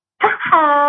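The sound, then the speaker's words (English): A voice imitates a fart with a single loud, buzzy vocal blurt, rough and wavering at first, then holding a steady, humming pitch for about half a second. “That probably did not sound like a fart.”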